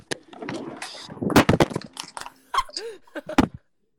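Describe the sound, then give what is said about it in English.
A phone is thrown across the room and clatters against a hard surface, making a burst of sharp, loud cracks and knocks over a few seconds before everything goes silent. “I might have cracked my phone.”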